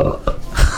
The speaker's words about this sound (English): was that a belch?